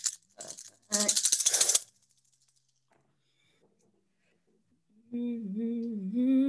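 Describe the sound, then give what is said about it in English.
Dice clatter and rattle across a hard tabletop in a few quick bursts during a tabletop game, followed by a quiet pause before a voice begins speaking. “So with 4 successes, now you're going to roll your chaos die and see what you get.”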